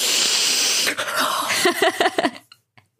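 A long, deep, airy inhale through the nose as someone sniffs a scratch-and-sniff sticker for several seconds, a steady hissing sniff that breaks into a few shorter choppy sniffs before stopping abruptly into silence. No voices.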